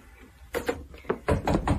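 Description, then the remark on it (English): Several firm knocks on a door, a quick pair followed by a faster run of three or four raps, with a short pause between groups. “I'm sorry, someone's at my door.”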